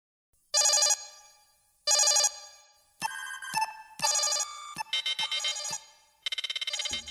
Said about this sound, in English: tactical analysis alarm going off with that big Romulan threat.